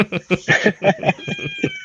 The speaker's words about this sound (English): There goes your cat. That's, you know, her vocabulary is meow.